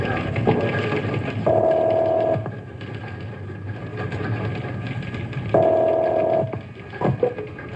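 An insurance broker dials a client's telephone number with a few faint clicks, then the line rings twice through the earpiece, each steady buzzing ring lasting about a second with a pause between, over a low background hum.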